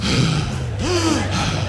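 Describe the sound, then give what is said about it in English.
A voice imitates a deep, drawn-out gasping breath, loud, with a rising strained pitch in the middle, followed by a breathy exhale. “And then you'll start breathing.”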